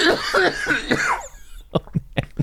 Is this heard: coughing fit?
yes